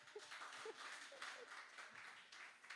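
A church audience applauds steadily for a few seconds, a dense wash of many hands clapping at once, with faint voices murmuring underneath.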